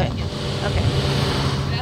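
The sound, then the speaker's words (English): A car drives down a mountain in Humacao, following another vehicle, its engine and road noise making a constant low rumble with a broad hiss on top, fairly loud throughout. “So I'll just follow you guys in my car.”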